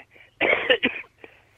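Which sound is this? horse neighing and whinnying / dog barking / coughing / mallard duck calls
coughing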